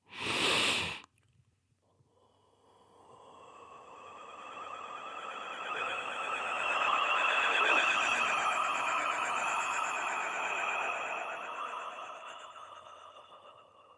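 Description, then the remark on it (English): A breathy, warbling vocal tone with shimmering overtones, made with an overtone breath vocal technique, swells steadily for over ten seconds and then slowly fades, preceded by a brief burst of noise at the very start. “And there's a warbling effect that sits at the center of the vocal technique and sound experience of it.”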